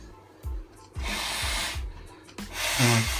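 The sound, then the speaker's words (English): Two forceful, breathy bursts of nose blowing by a person with a sinus cold, fairly loud, the first long and rasping, the second shorter with a honking edge, amid faint rustling. “And now I gotta blow my nose.”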